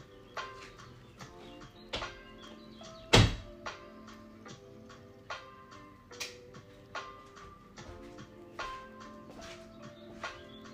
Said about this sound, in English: Close door.